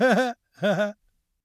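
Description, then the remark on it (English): A yawn as recording starts, heard as two short, voiced, breathy bursts with a slight rise and fall in pitch, separated by a brief pause, followed by silence. “What is up with me yawning every time we hit record?”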